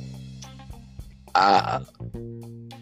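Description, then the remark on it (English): A single loud, throaty burp erupts midway, lasting about half a second, over a steady low background hum with a few faint clicks around it. “We're not going to try not to burp?”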